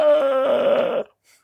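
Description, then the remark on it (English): A voice imitates the scream of pain of Spock, a Vulcan: one sustained, strained cry of about a second, loud and tonal with a wavering pitch that shifts partway through, then cuts off abruptly into near silence. “Because that's kind of what he sounds like when he screams.”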